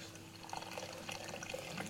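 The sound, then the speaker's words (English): Fizzy water pours steadily into a bowl as an ingredient for a 30-minute bread, a continuous splashing with faint fizzing crackle throughout, quiet overall and without any voices. “And then this is the secret ingredient for the 30-minute bread, is fizzy water.”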